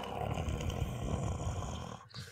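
A cat purrs steadily into a microphone, a continuous low, rumbling buzz with a fine fluttering texture, holding an even loudness and dipping briefly just before the end. No one speaks.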